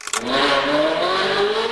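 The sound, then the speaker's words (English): A Ferrari sports car engine sound played by a device that makes an electric car sound like other cars, revving hard, its pitch climbing steadily in a loud, continuous roar that lasts under two seconds with no talking. “You got a Ferrari in that thing?”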